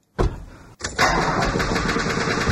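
A dented car's engine cranks loudly in two attempts at night in fog, a brief grinding burst, a short pause, then a longer rhythmic churning that keeps turning over without catching.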